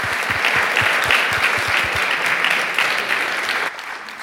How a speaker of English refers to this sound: Thank you very much for that warm introduction, setting up this great event, that nice round of applause.